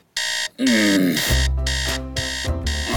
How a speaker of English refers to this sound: Alarm off.